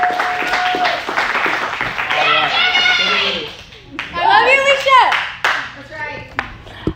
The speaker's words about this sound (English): Can you give Allison a hand clap as she comes up?